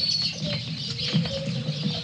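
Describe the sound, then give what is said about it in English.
A busy chorus of caged lovebirds and canaries in a pet shop chirping and twittering continuously, many overlapping high tweets, with a low rustling, shuffling murmur underneath. “Here we are, lovebirds. Those canaries.”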